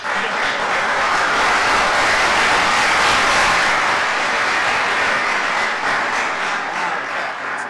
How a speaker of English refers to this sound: Building up the loud clap for you, that's all.